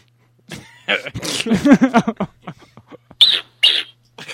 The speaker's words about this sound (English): It sounds like someone's taking a poop. That's our eagle. You think that's anything worthwhile? This is our fucking national bird.